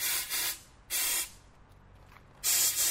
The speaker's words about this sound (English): Adding a wee bit of air into it, that's exactly it. So water and air. That's the secret to getting those rockets to fly really far.